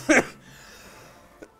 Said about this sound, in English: Sorry for the coughing.